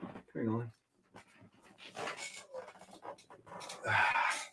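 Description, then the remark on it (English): A dog, Norman, pants heavily in quick, breathy bursts, with rustling movement and a couple of short vocal whines mixed in, growing louder toward the end. “So as I'm doing this negotiation for that Campanella, hold on, I got to grab my dog.”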